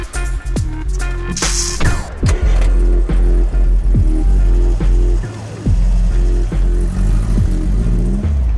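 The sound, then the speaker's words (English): A car engine runs loudly, its low rumble rising and falling in repeated revving surges over about eight seconds, with no voices. “Whose car's that?”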